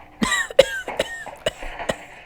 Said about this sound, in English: It's hard to sleep when you're coughing all the time from the coal dust.